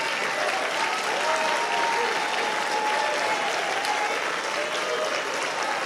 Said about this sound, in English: I want you to applaud them. Come on, do better than that.